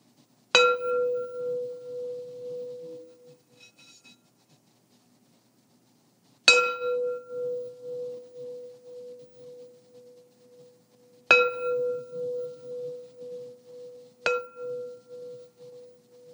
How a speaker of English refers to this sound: And how does the sound of the bell land with you?